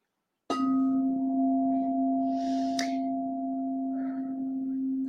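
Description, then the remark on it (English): A singing bowl is struck once and rings out with a deep, steady hum and a higher overtone. A second light tap comes midway, and the tone sustains loudly to the end. “So I'm going to do the singing bowl again.”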